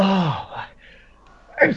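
A single voiced sneeze with a drawn-out falling intake before a breathy burst, then a brief quiet pause and a short vocal sound at the end.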